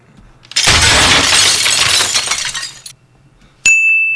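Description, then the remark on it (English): A car crash sound effect: a sudden loud crash of smashing, shattering glass that rumbles on for over two seconds, then after a brief silence a single bright, ringing ding. No one speaks. “Let's do car crash again.”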